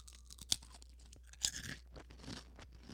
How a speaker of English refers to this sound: Yeah, I mean, that's a good crunch. I can hear it. I can hear it very well. Yeah. That's a nice crunch. Cool. Well, I wonder if this is, like, super annoying for anyone listening, like, to hear someone else crunching.